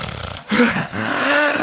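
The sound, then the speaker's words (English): A voice imitates loud snoring as a trick to get a sleeping person up: a short rasping snort followed by a longer, sustained guttural rattle, low-pitched and growly, with no other talking. “You use every trick to get this person up. the snore trick.”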